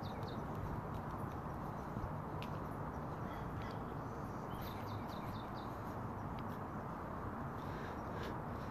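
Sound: birds chirping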